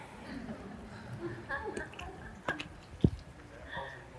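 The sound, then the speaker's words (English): A preacher pauses during a sermon to take a drink of water, with a few wet sips and a couple of sharp gulping swallows near the end, over a faint background. “Pardon me, for those who are watching at home. I'm in need of water.”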